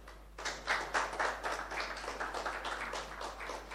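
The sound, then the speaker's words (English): An audience breaks into a round of applause, many hands clapping together in a steady, dense patter that starts abruptly and carries on at an even, moderate level without any talking. “Well, so once we all agree that this is the best car for its range, then once again, another round of applause.”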